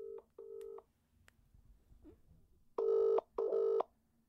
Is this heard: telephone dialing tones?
yes